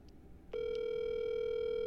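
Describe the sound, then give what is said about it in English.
After a brief moment of low background noise, a phone call's ringing tone starts and holds steady: a single, unbroken mid-pitched electronic hum, fairly loud, with no voices. “You got him? I got him right here. Let's see if he answers.”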